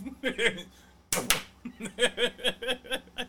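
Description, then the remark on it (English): A phone thrown out of a car window smacks onto the freeway pavement in one sharp, loud crack with a brief rattling burst. Voices talk before and after the impact. “Does this sound like your phone hitting the freeway?”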